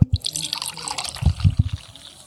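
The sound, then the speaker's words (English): Water pours and splashes into a glass for a supper guest at Eleanor Roosevelt's vacation home in Warm Springs, with a bright trickling hiss and a few low glugging bursts as the liquid falls, lasting just a couple of seconds. “Would any of you ladies like a beverage? I will take some water, please.”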